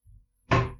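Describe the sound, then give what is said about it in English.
A door swings shut without slamming: a soft, dull thump, then a brief louder clunk of the latch catching, with no one talking. “I was waiting for the door to slam.”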